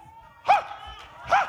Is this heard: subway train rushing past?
no